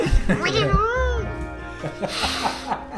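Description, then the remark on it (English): A person imitates a cat with a drawn-out, wavering meow, loud. Brief vocal noises and breathy sounds follow. “the Mad Cat.”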